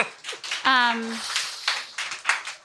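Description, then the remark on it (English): A crowd claps in a dense, steady patter for a few seconds, with a short rising whoop or cheer from one voice near the start. “You can applaud that, 30-year-olds.”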